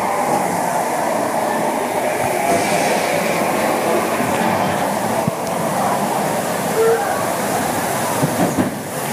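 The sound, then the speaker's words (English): A loud, steady roar of rushing water fills the whole stretch as a boat ride goes down a waterfall, with rumbling low churn and no clear voices. “Oh, we're going down the waterfall”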